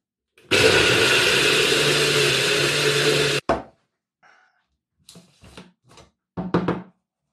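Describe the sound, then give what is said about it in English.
A blender roars loudly and steadily for about three seconds with a humming motor tone, blending a green smoothie of super greens powder and water, then stops abruptly, followed by several short knocks and clatters. “There we go, one green smoothie.”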